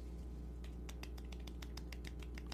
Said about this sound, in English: Bravo. We're going to give you the golf clap. And we're going to christen something today. What's up? The Angry Me Golf Clap.